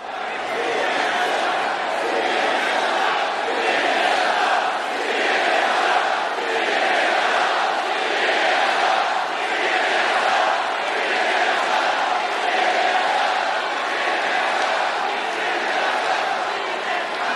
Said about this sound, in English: This is the news, and within 6 minutes of the rally starting, you hear a chant begin spontaneously from the crowd that says, CNN sucks, CNN sucks. You can hear it here.